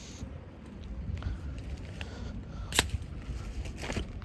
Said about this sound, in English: it's raining, let me open up my umbrella.